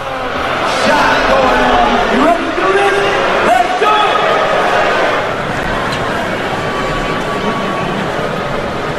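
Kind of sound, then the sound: crowd, stadium crowd booing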